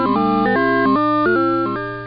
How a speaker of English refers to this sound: In round 3, we heard video game sounds. The first sound was the game Galaga.